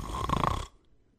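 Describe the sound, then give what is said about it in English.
A voice imitates a single loud, rasping snore, harsh, lasting under a second before cutting off into silence. “or do we need to start prepping for sonic damage from snores?”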